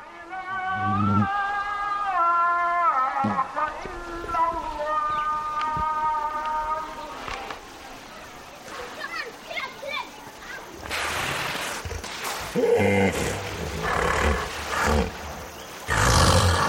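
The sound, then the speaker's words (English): Hippos surfacing from the water at dusk along the Mara River in Kenya call in a series of deep, resonant honks and wheezing grunts with wavering pitch, then break into louder, rough, chuckling bursts toward the end, one overlapping another. “We leave you this week in Africa, along the River Mara in Kenya, where it's said the hippos spend their days in the water telling jokes and then surface at dusk for a good laugh.”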